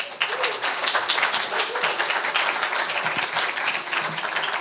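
A crowd applauds steadily, many hands clapping in a dense, continuous wash of sharp claps that holds at an even, fairly loud level throughout.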